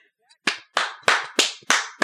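Six sharp hand claps in a steady, slow rhythm, each loud and crisp with a short ringing tail, with no talking over them, given as thanks to last week's guest, Jack Allison.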